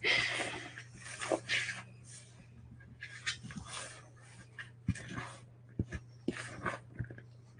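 dog whimpering and crying

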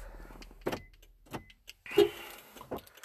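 car being turned off

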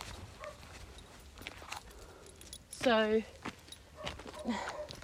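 dogs barking

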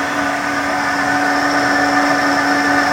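kitchen blender running

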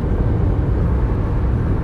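car road noise

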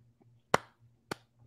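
hands clapping

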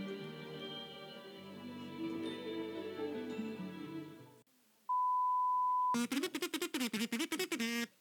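phone call dial tone

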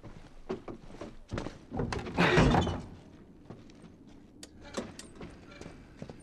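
door being closed

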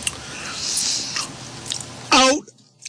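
chewing food

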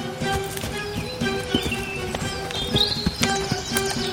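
donkey hooves clip-clopping

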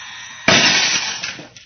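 drinking glass shattering

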